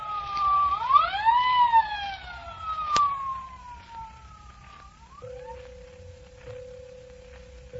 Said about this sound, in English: The siren came, and the ambulance appeared